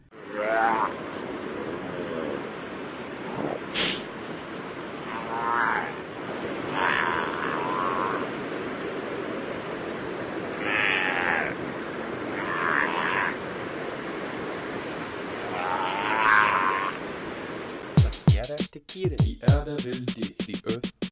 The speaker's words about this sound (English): So, as the volcanoes pour lava into the sea, we celebrate the Hawaiian monk seal. Hear the sound.